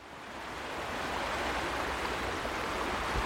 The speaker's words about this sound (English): I'm down on the River Usk and looking upstream from a set of rapids